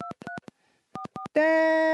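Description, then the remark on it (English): Telephone keypad dialing tones: short, crisp dual-pitched beeps in two quick bursts separated by a brief pause, followed by a loud, steady buzzing tone that holds to the end. “I wonder if someone can be smart enough to actually get the number from the tones.”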